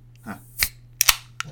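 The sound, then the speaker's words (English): A can of Rainbow Unicorn flavored Bang energy drink is cracked open: a few sharp metallic clicks as the tab is worked, then a crisp pop followed by a brief fizzing hiss. No one speaks. “you can't crack open a cup. No pop tops.”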